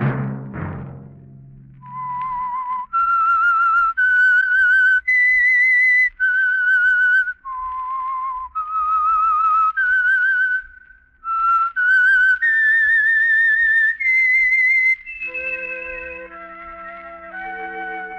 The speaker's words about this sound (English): Let that whistle be your signal for the Signal Oil program, The Whistler, each Sunday night at the same time.